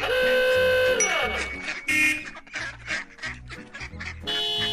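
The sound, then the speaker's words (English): A flurry of mallard ducklings and their mother quacking rapidly and loudly in a busy overlapping chatter, framed by steady horn-like blaring tones from honking cars speeding by at the start and end. “The cars kept speeding by and honking, and Mrs. Mallard and the ducklings kept right on quack, quack, quacking.”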